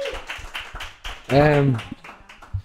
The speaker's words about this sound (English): Yeah We give him a round of applause.